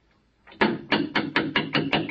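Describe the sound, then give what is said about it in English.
Someone raps on a church vestry door, about seven firm, evenly spaced knocks in quick succession after a brief silence, loud, with no voices. “I think that's probably him now. Come in. The vestry door's not locked.”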